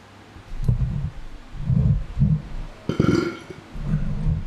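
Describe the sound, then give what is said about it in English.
A low, croaky burp rumbles out in several guttural bursts over a few seconds, with one louder, brassier belch near the end before trailing off. “I hope you didn't hear that. If you didn't hear that, I burped”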